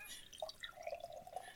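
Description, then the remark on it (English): Amber-colored beer poured hard from a crowler, producing a very foamy head; a steady gurgling stream with bubbly, splashing pulses, moderately loud, with no voices. “it's got a very foamy head because Steve poured it hard”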